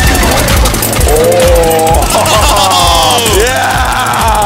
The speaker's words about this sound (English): First motorcycle. You look pretty cool right now. Thank you. I'm going full throttle. Oh man, that's really smoking up. Yeah. Woo. Careful, bro. You almost just wrecked the world's first motorcycle.